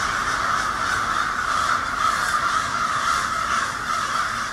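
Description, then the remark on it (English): A huge flock of hundreds of crows perched on every branch of the trees caws and screams all at once, a dense, unbroken wall of harsh, overlapping calls that stays loud and steady throughout, with no voices. “It's like hundreds of them on every twig of every branch of every tree. And they're all screaming.”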